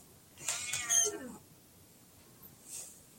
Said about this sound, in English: It's down here. This cat's whining. Yeah, well, that's what happens, Whiskey.